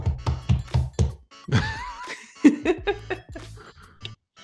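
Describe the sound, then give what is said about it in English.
A rapid series of dull, heavy thumps and knocks against a microphone, mixed with brief laughter and giggling in between the bumps. “It's a loose podcast, so, you know, there's banging microphones is all good.”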